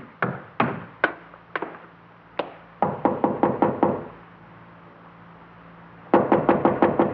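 Knocking on the wooden door of a study above a garage, at the top of a flight of stairs: a few spaced raps, then a quick run of firm knocks, a pause, and another fast burst of knocks. No voices.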